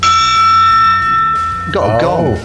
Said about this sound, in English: Got a gong. Is it a little one? Must be. Yeah. Well, yeah. Yeah. It isn't one the size of the house now. That's what we want. I've got a desktop gong.